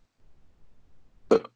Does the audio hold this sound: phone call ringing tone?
no